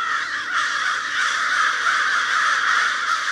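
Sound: crows cawing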